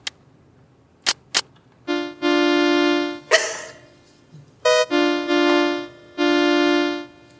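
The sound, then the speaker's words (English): A couple of sharp clicks, then a car horn honks in several long, steady blasts with brief gaps between them, the flat buzzy tone loud and sustained. “Car horn.”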